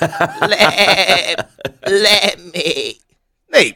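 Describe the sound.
A person imitates a lamb, letting out a series of wavering, nasal bleats in quick succession, with a short spoken phrase mixed in and a final rising bleat after a brief pause.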